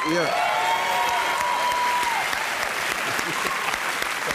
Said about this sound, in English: And they're just applauding because they're star fuckers and you're a star now. They don't know any of this shit either.